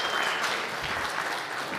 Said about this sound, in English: I think we have to give him a wonderful applause for those first three sermons and setting up the series.